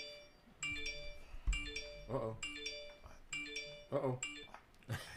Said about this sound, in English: Uh-oh. There we go. Got my daddy calling. He wanted to chime in, man.